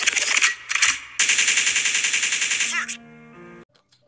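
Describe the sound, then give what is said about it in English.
A loud gunshot sound effect: a couple of sharp blasts, then a rapid, evenly spaced burst of automatic fire lasting a couple of seconds, ending in a brief electronic tonal tail. “code means rewind, the gunshot means forward.”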